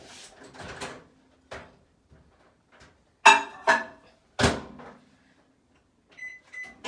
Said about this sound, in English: So while we're doing everything else, because this needs to be warm and not scorching hot, so I'm just gonna put it in the microwave to melt it.